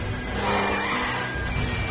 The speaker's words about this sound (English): But this is done entirely through a car chase through the streets and tunnels of Moscow, going for minutes with many cars piling up and piling up and piling up until finally